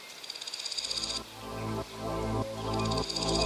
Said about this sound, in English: Grasshoppers rub their back legs against their abdomen, making a noise.